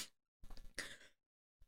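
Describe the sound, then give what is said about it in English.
One forceful sneeze: a short voiced build-up bursts into a harsh, hissing blast that fades within a second. Brief noises bracket it, with no talking. “No, do you remember that episode when I kept sneezing? Not these attacks.”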